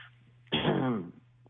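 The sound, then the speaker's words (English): A voice imitates a woman clearing her throat each time she sipped wine on a date: one short, raspy, voiced rumble lasting about half a second, fairly loud, with a faint low hum underneath. “Yeah, but I guess it was like she kept clearing her throat. Like every time she took a sip of wine, she would like...”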